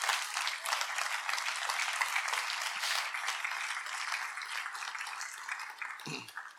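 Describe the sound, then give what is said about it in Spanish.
A church audience breaks into sustained, dense applause for the Lord, many hands clapping steadily for several seconds before it begins to taper off at the end. “Eso merece un aplauso al Señor.”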